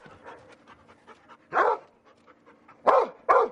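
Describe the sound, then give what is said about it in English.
A search and rescue dog at a U.S. training facility with simulated collapsed freeways, leaning buildings, rubble piles and wrecked cars lets out three loud, sharp barks, the last two close together, with quieter panting and snuffling in between. No one speaks. “It's the only facility of its kind in the U.S., built specifically for dogs to learn search and rescue.”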